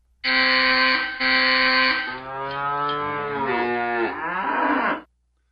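A cow lets out a loud, drawn-out moo lasting several seconds, its pitch wavering and sliding downward near the end, alone with no voices.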